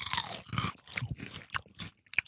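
Crisp crunching and chewing of light, airy puffed snacks like thick Quavers, from a big bag, with several quick bites in an uneven rhythm, each a short burst of brittle crackle fading into softer munching.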